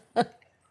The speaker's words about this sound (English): Well, here, let me try just some of the cake. Okay, just some of the cake. I love you chewing in my headphones.